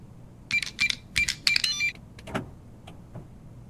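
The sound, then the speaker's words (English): A keycard swiped through a reader on the outside of an office door: a run of short, high electronic beeps over a buzzing mechanical whir, followed by a single muffled clunk and a couple of faint clicks, with no voices. “Lizzie's still got her key card, so she's gonna swipe it.”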